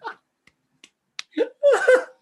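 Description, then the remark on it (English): A few slow, evenly spaced hand claps ring out, soft and sparse, in a deliberately unenthusiastic rhythm, followed by a voice breaking in right after. “He gives him a little sarcastic clap, doesn't he?”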